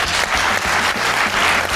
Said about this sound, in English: Give us a round of applause.